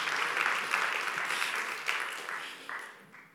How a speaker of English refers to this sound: Now you can clap. All right. Thank you, guys.